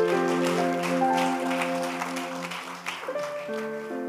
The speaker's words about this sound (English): Give the Lord a good clap once again.